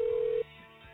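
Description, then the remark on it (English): A telephone line sound as a caller's phone call is picked up on Boy Crazy Radio: a single steady, fairly loud beep tone lasting under half a second, then it cuts off, leaving faint hissy line noise. No one talks. “I'll pick up this phone call.”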